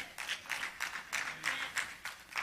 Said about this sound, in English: Whew, I thought that'd get a little bit more. Just kidding. I'm not really hung up on your applause, but I do want you to be hung up on the truth that Jesus is crazy about you.